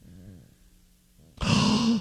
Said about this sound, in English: Now... Plug your nose and do a humming